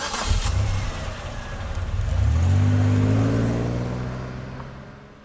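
A car engine starts low, then revs up, its pitch climbing steadily as the vehicle accelerates, loud, before easing off toward the end. No voices are heard.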